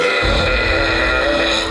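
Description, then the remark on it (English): One very loud, drawn-out burp rumbles for nearly two seconds, forceful with a raspy, throaty tone that holds steady before cutting off. “The best drink would probably be a Sprite with a snack, and then all of a sudden you just let a big monster burp rip.”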